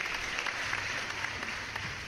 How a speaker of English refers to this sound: For those of you that are wondering, that applause was in his contract. Twice a year, we have to have applause when we introduce him.